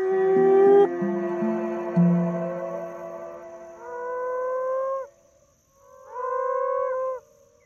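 Moaning frogs calling at night: long, low, drawn-out moans rich in overtones, several overlapping at first, then two separate calls with a brief pause between them, clear with no talking.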